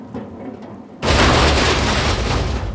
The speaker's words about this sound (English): It fell down onto us with a crash. A scream of splintered metal slicing metal.